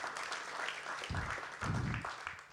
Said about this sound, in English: Yeah, give it up. Another round of applause for our Yop debuter,